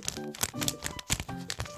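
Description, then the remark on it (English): The sleeve of a 7-inch vinyl EP record crinkles and rustles in a run of irregular, crackly bursts, moderately loud, with a faint hum of voice underneath in places. “Can you do a crackle ASMR? Yes, here's the sleeve.”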